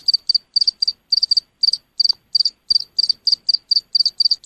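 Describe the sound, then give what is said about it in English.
A bug stuck up a person's nose, held to a phone, chirps steadily like a cricket in quick, evenly spaced bursts of high-pitched trills, each pulse clear and fairly loud against an otherwise quiet background, with no voices present. “Yeah, it sounds like that, like a cricket.”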